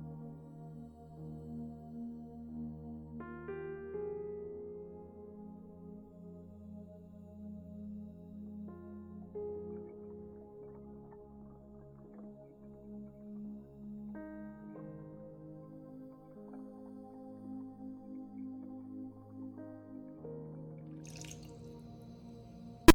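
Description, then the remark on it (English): Water pours steadily into a blender jar holding spinach, banana, frozen fruit and apple, a soft hollow trickle for over twenty seconds whose resonant tone rises in steps as the container fills. The sound is quiet, with no talking. “And water.”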